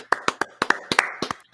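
A brief burst of hand clapping welcoming a guest, about nine sharp, bright claps in a quick, slightly uneven rhythm, with no talking over them.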